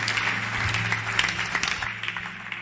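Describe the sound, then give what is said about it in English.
An audience claps hands together for Jesus in worship, a dense, steady patter of many overlapping claps, with a low hum running beneath and a few sharper claps standing out. “Begin to clap your hands together for Jesus.”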